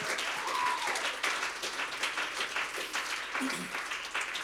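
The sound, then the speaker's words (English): An audience claps their hands in sustained, dense applause, a steady wash of overlapping claps at fairly even loudness, with faint voices murmuring underneath. “Would you clap your hands for provision?”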